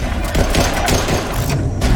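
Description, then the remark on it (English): A loud, continuous barrage of video game gunfire as a Turian and a Spectre shoot at Cerberus amid fires on the Presidium Ring: rapid overlapping shots crackle in dense bursts over a heavy, rumbling low end, with occasional booming thuds and no voices. “We see a Turian and a Spectre shooting at Cerberus.”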